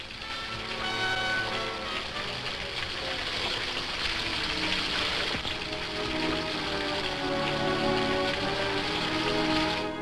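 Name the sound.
rain falling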